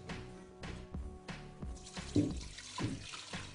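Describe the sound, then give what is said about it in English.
Spring water is poured steadily into a container to cover dried sea moss, a trickling and splashing flow with a few soft knocks and gurgles, fairly quiet, with no one speaking. “So I'm gonna put the whole thing in there, and I'm going to cover it with water.”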